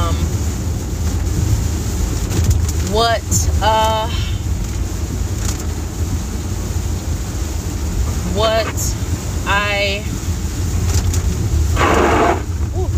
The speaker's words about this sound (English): And I'm driving while recording. I just could not resist the inclination that I had to go ahead and begin. I could not wait until I was stationary because it was just on me too much.